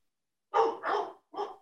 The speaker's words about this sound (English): Do you hear my dogs barking? I hear, which with your microphone, they must be barking. Like, they're barking really loud because my neighbors are, I hear them.